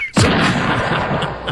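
A single loud cannon blast, fired at sunrise to get everybody up, booms out abruptly, followed by a long rolling rumble that echoes and slowly fades, with no voices present.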